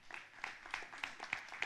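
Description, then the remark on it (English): An audience claps together in a fairly steady rhythm, with sharp, bright claps repeating about three times a second over a soft wash of scattered applause. The clapping is fairly quiet, with no voices. “And that is worth saying amen and clapping for, because that is our future.”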